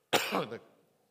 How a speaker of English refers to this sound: Sometimes I purposely cough in public places. Because it's fun watching reactions.